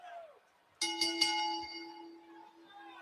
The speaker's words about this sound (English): So referee, ring the bell. Ring the bell.